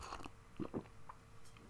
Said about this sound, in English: Sip some coffee there.